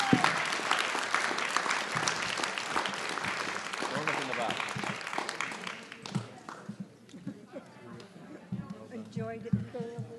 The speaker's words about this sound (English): So come up real quick. I have something to give you. And everyone, please, let's give them an applause.